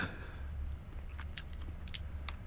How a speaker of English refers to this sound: Oh, that I've just tasted the Fountain of Youth. I've sticked my tongue in it. I haven't chewed off the bread. I've licked it from the bread.